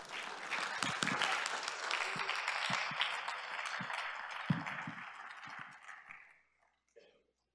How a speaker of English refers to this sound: And can we just welcome him with a round of applause?